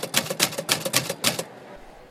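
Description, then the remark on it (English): Typewriter keys clack in a quick, steady run of sharp strikes, then fall quiet briefly before one more key hits at the very end. “While Hunter is typing”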